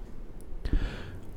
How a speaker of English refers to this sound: Oh, yawning time.